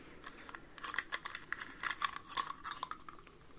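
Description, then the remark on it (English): Three keys, one for each bedroom, clink and jingle as they're handled, a quick irregular run of small bright metallic clicks, fairly soft, with no voices. “I have three keys, one for each bedroom of mine.”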